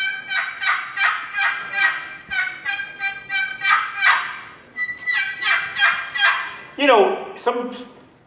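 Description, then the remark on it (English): An aluminum turkey call with an aluminum lid plays a long string of loud, nasal yelps in steady rhythmic bursts, clear, ending in a few sharper, rising cutts. “All right, what's unique about that call? It's made out of aluminum. The lid is made out of aluminum, and it's got volume.”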